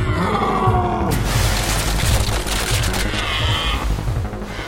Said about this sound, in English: The deer, unable to stop its rampage, slid uncontrollably straight into the wall.